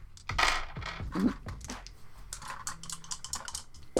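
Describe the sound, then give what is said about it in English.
Two dice clatter and tumble across a hard tabletop, a burst of sharp clicks up front followed by lighter scattered taps as they settle. Fairly loud, with no voices. “I got 2 dice to throw at that.”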